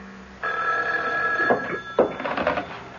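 A telephone rings in an apartment with a steady, bright metallic trill lasting over a second, then a couple of sharp clunks cut in as the ringing breaks off into scattered rattling. No one speaks.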